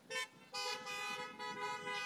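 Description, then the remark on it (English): Car horns honk in a few overlapping blasts: a short toot, then longer sustained honks that run together, fairly loud and steady, with no talking. “Yeah, I didn't get no honks on that one.”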